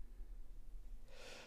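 A single quiet yawn, a soft breathy intake swelling near the end after a moment of faint background hum, with no talking.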